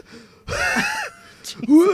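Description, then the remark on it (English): A person imitates the labored breathing of their dog Bulbasaur struggling outside in the heat: one loud, raspy, strained gasp, then a brief pause, a short breath, and a rising, wheezy voiced sound at the end. “He's like already fucked up with his breathing.”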